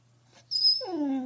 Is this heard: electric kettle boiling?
no